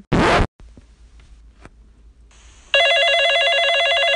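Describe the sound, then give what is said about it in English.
A quick zipping rasp, a few faint clicks, then Bob's telephone bursts into a loud, warbling electronic ring that keeps going steadily to the end. No one speaks. “Hey Bob, your phone's ringing.”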